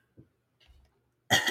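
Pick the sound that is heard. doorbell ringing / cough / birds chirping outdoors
cough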